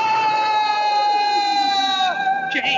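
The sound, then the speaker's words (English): A voice lets out a long, loud, steady wailing cry that holds one pitch, then dips and breaks off near the end, imitating the cries of a story character as he falls through the air. “You asked for the sound of his cries as he fell.”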